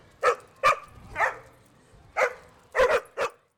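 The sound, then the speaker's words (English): Leo, a 13-year-old dog from Collinsville, barks about six or seven sharp, yappy barks in an uneven rhythm, with two fired off in quick succession near the end. No one is speaking. “What did Leo, the 13-year-old Collinsville pup, think of his ride?”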